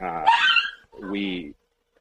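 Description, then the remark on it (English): A dog barks twice in quick succession, two loud, tonal barks with a short gap between them, followed by quiet. “We have some dogs.”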